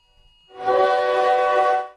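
A phone's emergency flash flood alert tone blares, a harsh, buzzy, steady electronic drone that swells in and holds loud for over a second before cutting off, with no talking.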